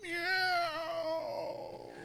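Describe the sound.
A person's voice imitates a cat's meow, one drawn-out, wavering mewl that slides downward in pitch and trails off, fairly loud with no other sounds.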